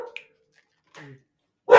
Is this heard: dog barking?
yes